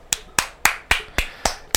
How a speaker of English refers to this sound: Now give me a little claps.